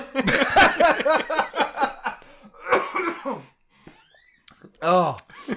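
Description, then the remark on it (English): A loud coughing fit from someone with a cold: a rapid run of harsh, rasping coughs, then a shorter burst after a pause, and one final strained cough following a brief quiet gap. “The stupid cold is killing me. I'm just going to coughing fits.”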